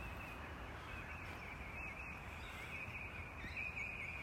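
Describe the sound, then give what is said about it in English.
Songbirds sing faintly over a steady outdoor hiss, a thin high trill running throughout with a few brighter chirps toward the end. No one speaks. “What are those birds imagining?”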